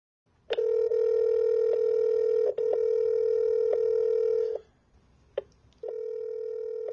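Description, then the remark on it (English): A loud, steady telephone dial tone hums for several seconds, broken by a few sharp clicks as someone dials an urgent call, then cuts out briefly before the tone returns. No voices. “I needed to get Gary on the phone right away.”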